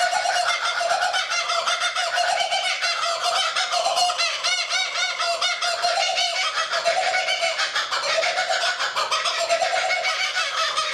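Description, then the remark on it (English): A kookaburra's raucous laughing call, loud, with rapid cackling notes that rise and fall continuously for the whole stretch and no voices alongside. “That was a kookaburra bird.”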